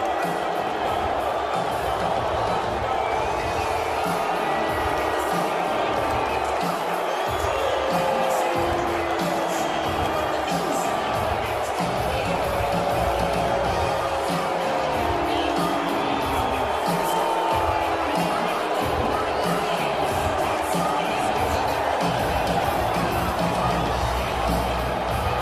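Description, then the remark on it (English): A large arena crowd at a UFC event at Madison Square Garden booing the visiting president, a dense, steady roar of many voices that holds at a loud level throughout, with occasional shouts rising above the mass. “And yes, he got booed out of the arena there too.”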